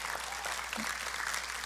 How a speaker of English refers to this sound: Hey, give our young people a round of applause.